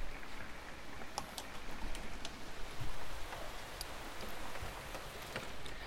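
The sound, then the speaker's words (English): Heavy rain pours steadily outside the windows, a dense continuous hiss with scattered sharp drips and taps, unbroken for the whole stretch, with no voices. “The rain has come, so I will continue to do this work, but I will shut some windows.”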